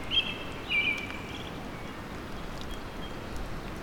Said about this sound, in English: American robin is singing.